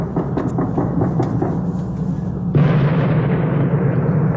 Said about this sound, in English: this is audio from Kansas City after the win. People going outside shooting off guns, fireworks, and question mark explosions. Question mark explosions. We don't really know what, you'll hear it. It sounds like a war zone.